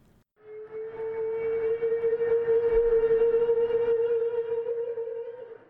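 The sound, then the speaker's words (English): Humpback whale song heard underwater by a diver beside a steep drop-off: one long, steady moaning tone with a buzzy edge of overtones, holding its pitch for several seconds before sliding slightly upward at the end. No one speaks. “Humpbacks, I spit out.”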